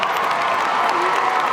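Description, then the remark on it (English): A large audience at a class of 2014 graduation commencement ceremony applauds steadily, with graduates standing to applaud those who helped them; a dense, continuous wash of clapping with some crowd noise mixed in, holding an even loudness throughout. “I ask the class of 2014 to stand and give a round of applause to those who helped you reach this moment.”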